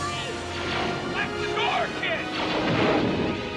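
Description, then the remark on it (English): Sci-fi blaster fire from a film scene in which Luke stands and then starts blasting, hitting a stormtrooper: quick, zapping shots with swooping pitch, layered over a dense, loud wash of music and action noise that continues throughout. “I love that Luke just stands there and then just starts blasting and just nails that first stormtrooper.”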